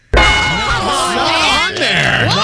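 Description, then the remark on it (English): A loud game show bell, pushed by the button pusher, rings out abruptly and keeps clanging steadily for a couple of seconds, bright and metallic, while excited voices shout over it. “Because the button pusher pushed the bell.”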